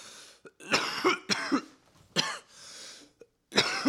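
A burst of harsh coughing: several rough coughs in quick, uneven succession with short pauses between, some with a throaty, hacking edge. No one speaks.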